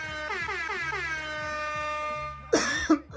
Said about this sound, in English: Let me hit this bowl real quick and let me do something different. Some Tahoe. I have a blunt and everything, so we're good. I just want to get a little high. Oh shit. And then the cough begins.